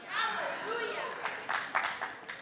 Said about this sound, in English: I wasn't even expecting a clap there, so that was bonus.